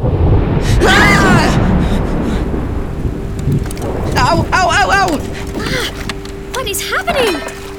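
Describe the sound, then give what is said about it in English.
Metal objects rain down over a heavy, continuous rumbling roar, with bursts of ringing metallic clangs and clatters arriving in scattered clusters, loud. “It's definitely raining metal.”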